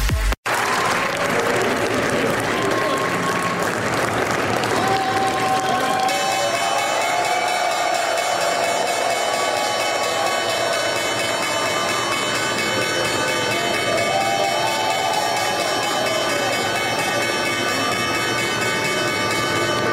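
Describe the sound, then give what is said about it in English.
A crowd on the floor of the New York Stock Exchange cheers and claps steadily throughout, and a few seconds in the opening bell starts and keeps ringing continuously over the loud, busy applause. “Louder cheer than normal. That was the opening bell.”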